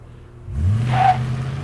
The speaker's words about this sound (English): All right, we're going to start with this stock exhaust. Oh, okay, all right. Stock truck. Stock truck.